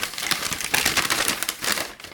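Paper crumples and crinkles in a steady stream of sharp, dry rustles and crackles, continuous for a couple of seconds with no voices.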